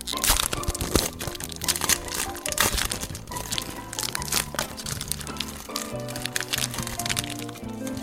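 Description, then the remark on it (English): Loud, continuous crinkling of the wrapper of a Star Trek The Next Generation Portfolio Prince Trading Card Season 1 pack, held right up against the mic, a dense stream of sharp crackles and crunches with no talking. “Just for the ASMR crowd, I'm going to do this right up against the mic so that they can hear all the little crinkles.”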